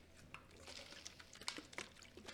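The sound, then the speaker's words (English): Water poured from a bottle of Pawnee Water, an alkaline water made in Hamilton, Ohio: a quiet run of gurgling glugs and small splashes lasting a couple of seconds, with no one talking. “And let me tell you about this lovely bottle of water right here.”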